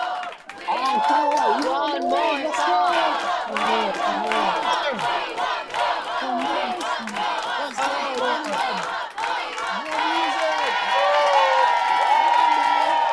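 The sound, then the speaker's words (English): A large audience shouts and cheers for more after a band's song ended, many overlapping voices calling out at a steady, loud level with scattered yells rising above the roar throughout. “The audience was silent for a moment and then shouted for more.”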